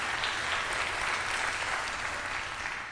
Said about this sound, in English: And if you love the shepherd, give him a hand of praise tonight. Amen.